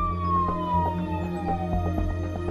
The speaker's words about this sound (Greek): Αρπάζει την τσάντα της 24χρονης κοπέλας και εξαφανίζεται, καθώς από μακριά ακούγονται οι σιρήνες των περιπολικών που φτάνουν στο μικρό καβούρι.